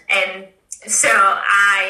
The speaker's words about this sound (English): Bless you. Sorry, I'm a quiet sneezer, so you have to sneeze.